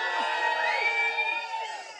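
An audience cheers and shouts in a sustained, dense roar, with overlapping high voices and whoops rising above the crowd noise, fading slightly toward the end.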